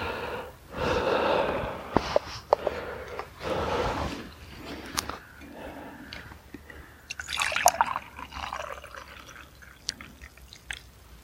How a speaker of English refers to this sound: I think another minute. Let's pour the tea out.